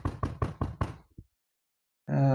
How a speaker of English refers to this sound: If you're with me, knock on wood.